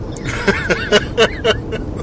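Steady low road rumble fills a car cabin while driving on a family road trip, a constant engine and tire drone with brief voices murmuring over it.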